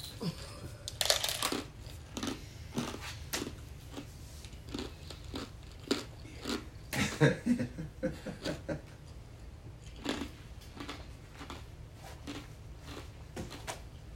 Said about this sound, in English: I don't know why, but I just want to be like crunch, crunch, crunch, crunch. Why she's over there crunching away. I have no shame. It's ice, it makes noise.